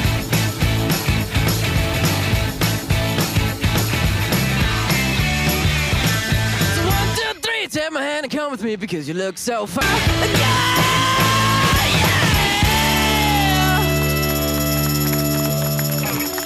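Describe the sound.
A loud rock song with a steady, pounding drum beat and a sung lead vocal; midway the band drops out briefly to a sparse vocal break before the full, driving groove crashes back in.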